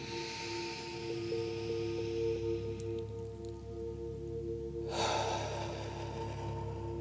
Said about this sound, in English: Breathing deeply in through the nose. And this time out through the mouth. Again, deeply breathing in.